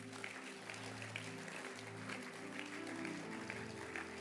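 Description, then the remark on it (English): A church audience claps together in a dense, steady wash of applause lasting several seconds, with sustained low musical tones droning underneath. “Oh, clap your hands.”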